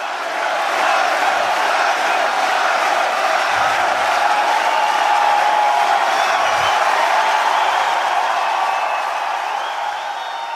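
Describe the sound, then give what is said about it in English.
A large outdoor golf crowd chants Tiger's name and cheers after his victory, in a loud, sustained roar of many voices that stays steady for about ten seconds, with no single voice standing out. “Before Tiger could finish politely shaking hands with his opponents and hugging his caddy, Joe LaCava, the crowd was chanting his name.”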